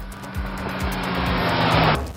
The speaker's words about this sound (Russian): От звука мотора мне даже пришлось прикупить наушники на мои уши, потому что это было нереально громко, и даже, можно сказать, этот громкий звук заряжал нас всех энергетикой.